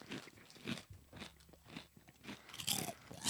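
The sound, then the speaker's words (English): Crunching of a crisp Uglies jalapeno-flavored potato chip being bitten and chewed, a series of sharp, crackly bursts repeating irregularly, getting louder toward the end, with no talking. “Look at that crunch. That's a good chip.”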